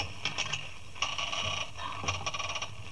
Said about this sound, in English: Confound it, this lock must be rusty. No, here it comes. Blast it, did it have to make that noise?